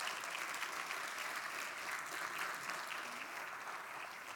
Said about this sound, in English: We praise God because of his mercies. We were united under one spirit, his spirit. Can I get a round of applause for God for that?